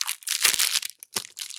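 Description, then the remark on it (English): The crinkly plastic wrapper of an individual animal cracker package being torn open and crumpled, a dense series of bright, rustling crackles with a couple of sharper crunches, heard alone without talk. “Okay, so they're individual packages.”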